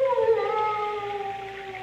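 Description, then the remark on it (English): A sustained, mournful howl from the many large dogs kept at the Chateau d'Azay, with a slowly falling pitch, loud and clear against a quiet background, held for nearly two seconds without any talking. “Only the dogs, monsieur. They keep many dogs. Large dogs at the Chateau d'Azay.”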